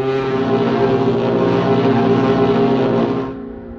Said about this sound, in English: The ship's speed was ordered to be reduced to 18 knots, then down to 15. And when the speed had been reduced, the order to sound the foghorn was given.